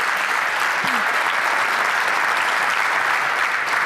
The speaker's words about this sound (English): We give her a little round of applause as she steps to the stage.